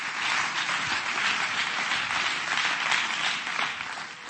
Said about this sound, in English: Come on, clap your hands to him and give him praise right now.